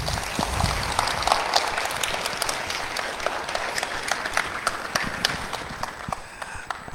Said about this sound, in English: Hey, let's give another round of applause for all the kids.